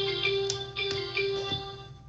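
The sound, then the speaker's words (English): A faint electronic notification alert chimes, a few short tonal blips over a steady soft hum, with no one speaking. “I'm not sure what that notification was, but I heard it.”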